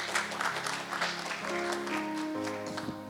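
An audience claps steadily for a few seconds, a dense patter of hand claps over sustained, shifting keyboard chords, with no one speaking.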